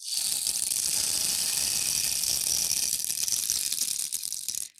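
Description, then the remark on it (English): A rainmaker percussion instrument produces a steady, hissing patter of tiny rattling beads, like falling rain, sustained evenly for several seconds before stopping abruptly. No one speaks. “That's my rainmaker.”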